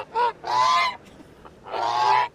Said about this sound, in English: You see a goose? What? You see a goose? Yeah. Take it.